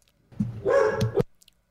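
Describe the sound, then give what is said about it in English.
A dog barks in a short burst, a couple of quick, harsh yaps running into each other over about a second, then quiet. “Kyle's like, fucking dogs”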